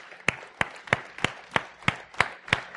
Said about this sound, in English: if you have served in one of those key leadership roles, would you just stand up right now? We want to give you a big round of applause.